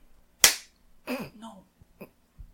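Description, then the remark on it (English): One sharp, loud hand clap rings out and fades quickly, followed by a short burst of voice and a few faint, scattered taps. “Stop clapping during the 10 seconds of silence.”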